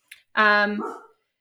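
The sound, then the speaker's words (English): A single bark from a dog named Marks, a fairly loud, tonal yelp lasting about half a second, ending in a breathy, rough tail, preceded by a faint short click, with no speech. “And there's Marks in the background, which is my dog, getting revenge on the cat that bit him a minute ago.”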